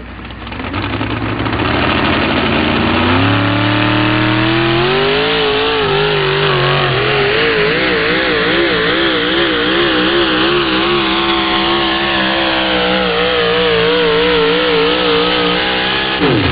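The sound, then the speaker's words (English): A Chevrolet S10 pickup truck called Fisher Nuts, from Tripp, South Dakota, revs hard during a truck pull. Its pitch climbs over the first few seconds and then holds a loud, wavering roar under strain for the rest. No one speaks. “Beautiful Chevrolet pickup.”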